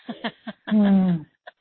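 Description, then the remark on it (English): A sneeze: a few short, catching breaths build up, then a loud, drawn-out voiced burst with a falling pitch, followed by a quick faint sniff. “Bless you.”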